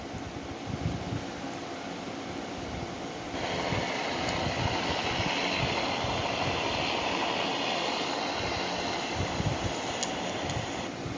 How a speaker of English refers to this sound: This was a helicopter confirmation the Lord sent me the other night, family.